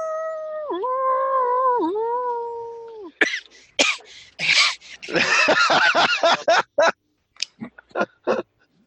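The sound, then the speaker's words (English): A person's voice imitates a wolf howl, a sustained, wavering tone lasting about three seconds, followed by a run of loud, choppy, breathy bursts. “And which I'm pretty sure I already have, even though you say I don't have it yet, but I'm pretty sure I have, is that I can howl at the moon. Howl.”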